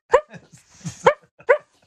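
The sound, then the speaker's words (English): A dog, Barky the Failure Dog, who has kennel cough, lets out three hoarse, raspy barks at uneven intervals, fairly loud, with a rough, breathy wheeze between the first and second bark. “It's bad because this week would have been a really good week because Barky the Failure Dog has kennel cough.”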